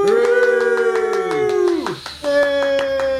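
A few people clap in a quick, steady patter for about three seconds, over loud sustained whooping voices of a small group giving a big hooray, swooping downward in pitch and then holding a new note.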